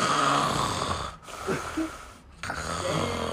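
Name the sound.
imitated snoring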